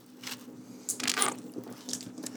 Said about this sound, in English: Sorry, I'm going to drink a water here. Gonna have to figure this process out down the road. Throat's already getting dry.